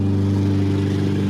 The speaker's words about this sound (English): Is that a lawnmower? Yeah, it's my neighbor. So loud.